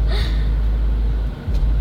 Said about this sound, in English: You hear that? Or I better, do you feel that? Yeah. That guy has a bass in his car. It's going to tremble the whole car apart. That cannot be good for the engine.